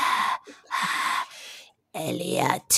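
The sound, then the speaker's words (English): A voice imitates an extraterrestrial's heavy, labored breathing: a few loud breathy huffs in a halting rhythm, then a longer wheezing, raspy voiced breath and a final sharp exhale. “And then when he's like breathing hard.”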